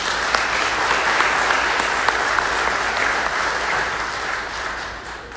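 A crowd breaks into sustained applause for Vacation Bible School children and all their teachers, many hands clapping in a dense, steady wash of sound that holds for several seconds before easing off slightly at the end.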